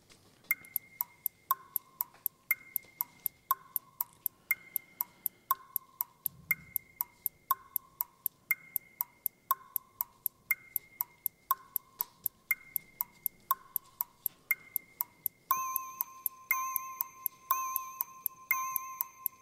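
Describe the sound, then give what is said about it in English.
A game show countdown clock, started for a numbers round with a target number of 736, ticks steadily at a brisk pace beneath a repeating bright musical phrase, building to a busier, higher flourish near the end. No one speaks. “target number is, with which we start the clock, 736.”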